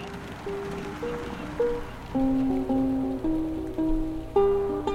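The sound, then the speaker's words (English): Steady rain patters against a car windshield, a dense hiss of drops running throughout, while a slow, stepping tonal melody plays over it. “Outside, it had started raining. Enough drops beating on our windshield for T to start the sonic wipers.”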